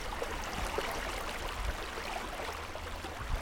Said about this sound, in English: It's about maybe 19 degrees, 20 degrees, and it has been raw and cold and icy. The ice has like a crunch to it right now. Chester Creek flowing through Anchorage.